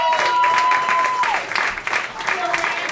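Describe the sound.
A crowd applauds steadily for about three seconds, a dense wash of clapping with a long sustained whistle early on and scattered cheering voices mixed in.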